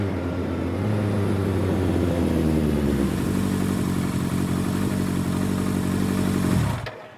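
A motorcycle with no plates pulls up to the Bellagio, its engine rumbling loudly, pitch shifting as it revs and slows, then idling steadily before cutting off abruptly near the end.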